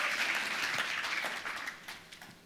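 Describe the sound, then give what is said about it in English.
A round of applause from a church audience as a man comes to the platform to read Ephesians chapter 2: dense steady clapping that fills the whole stretch, loud at first and gradually thinning out toward the end. “Why not give him a round of applause as he comes to the platform?”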